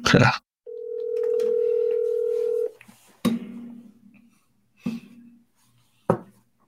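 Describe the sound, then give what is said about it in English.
A single steady ringback tone from a phone on speakerphone during an outgoing call plays for about two seconds, preceded and followed by sharp clicks and handling knocks. “And I'm going to make this call and put my phone here on speakerphone.”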